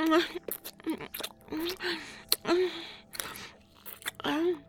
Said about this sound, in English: My mouth. Slurping. I'm sucking.